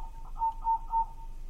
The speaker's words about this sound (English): So now here's the same song played at 1/4 speed, and you'll be able to hear the each chirp consists of three or four wing rubs or pulses.